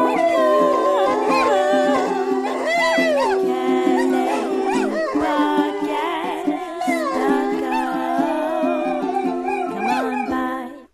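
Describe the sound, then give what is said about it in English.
Several dogs howl together in a loud, continuous chorus, their wavering, gliding cries overlapping for about ten seconds before cutting off abruptly. “I don't even have dogs, and yet dogs showed up and started howling at this fucking terrible.”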